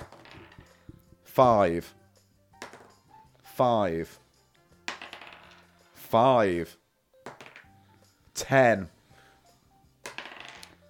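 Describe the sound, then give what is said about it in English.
Dice rattle and clatter across a hard surface in several short bursts, with brief voiced exclamations between the rolls. “I'm rolling the dice.”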